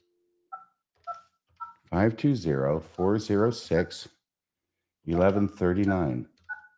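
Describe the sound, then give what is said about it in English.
Three quick dual-tone keypad beeps as a phone number is dialed, followed by a voice talking, then one more short dial tone beep near the end. “I wonder what happens if you call the number.”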